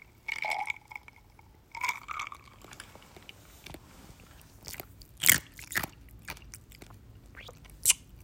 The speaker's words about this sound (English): Hold on, let me take a sip.